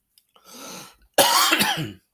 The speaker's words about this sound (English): Jesus, I am so sorry. I'm coughing so fucking much in the microphone.